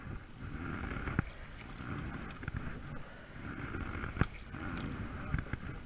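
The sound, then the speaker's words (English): Oars dip and pull through water in a steady rhythm, with sloshing and the odd wooden knock, all under a constant rush of wind buffeting the microphone. “I used to really like rowing. It was really peaceful, really therapeutic, sort of almost like swimming.”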